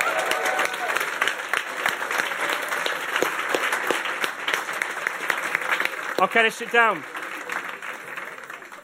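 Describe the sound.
A crowd applauds steadily with dense, sustained clapping for several seconds for standing people who were there when the group met at King Edward Boys' School, then a person speaks briefly over the fading applause near the end.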